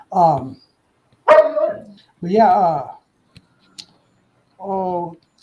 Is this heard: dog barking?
yes